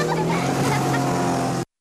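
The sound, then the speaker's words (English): A motorboat engine drones steadily and loudly with a low, humming pitch, running without pause for under two seconds before cutting off abruptly. “There's a problem if you drink and drive a boat.”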